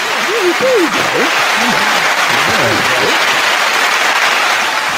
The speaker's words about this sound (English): Let me do the clapping.